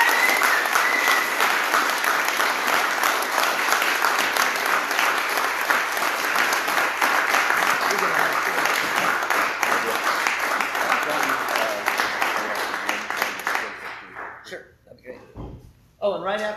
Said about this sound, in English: And I love this man. So I want you to bring him on with a huge round of applause.